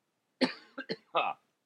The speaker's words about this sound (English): Now I'm coughing.